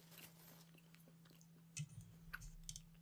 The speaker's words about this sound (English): Chewing.